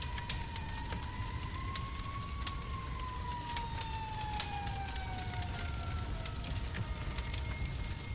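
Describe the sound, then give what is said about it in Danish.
An emergency vehicle siren, responding to a house fire in Rønne, holds a steady tone that slowly rises then drifts lower over constant rumbling background noise with scattered crackles and clicks. No one speaks. “Der stak høje flammer og masser af røg op fra parcelhuset på Helsevej 12, og udrykningskøretøjerne kom prompte.”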